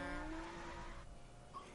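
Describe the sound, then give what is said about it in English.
A car's tires screech loudly in a sustained squeal that fades out, with engine rumble underneath and no talking, as real cars are driven through a street in a chase scene. “Tire screeches don't feel like highly modified.”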